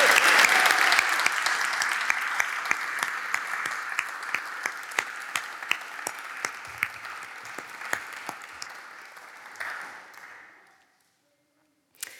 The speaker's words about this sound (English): So I wonder if we could just honour them, giving them a really big round of applause.